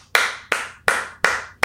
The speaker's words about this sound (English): That's applause-worthy. Absolutely. Absolutely applause-worthy.